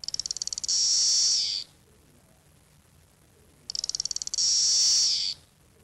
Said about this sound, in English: Did it sing, that lone cicada? Yeah. Yeah, it was singing.